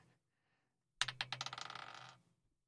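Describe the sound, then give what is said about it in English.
A d20 die clatters onto a hard table, bouncing in quick, accelerating clicks that tighten into a rattle before settling after about a second. It is fairly loud, with no talking. “Once I find my d20.”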